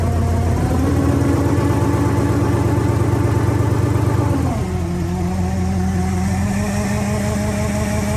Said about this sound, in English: Duramax on the engine dyno. Not on the engine dyno. Up on stands. Sounds thumpy for a Duramax. Does that have the cam in it that you've been working on? Hear the blower.